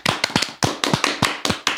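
A short round of applause for Chili's winning the showdown: about eight loud, crisp hand claps in a steady, slightly uneven rhythm, like a single person clapping, with no voices.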